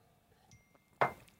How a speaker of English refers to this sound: I'm give you the cheers, the coffee cheers. Ching.